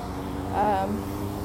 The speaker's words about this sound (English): sorry, there are all these motorcycles driving near me.